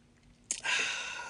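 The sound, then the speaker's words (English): A soft slurping sip of coffee: a brief click of the lips, then a breathy, hissing draw of air that trails off over about a second, with no talking. “Take another sip.”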